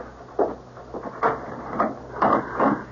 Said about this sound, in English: Better, I suppose, to answer the door.